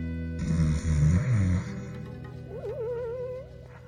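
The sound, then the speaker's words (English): A single loud, rumbling snore on a deep inhale, followed by a wavering, whistling exhale that rises and falls, from Antipa lying on his side on a concrete floor. The sound is alone, with no talking. “Some ways away, Antipa lay on his side, snoring loudly.”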